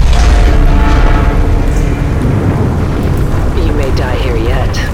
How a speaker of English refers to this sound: The explosive disconnects you recklessly fired broke the separate component structures free. As it floods, the platform is tearing itself apart.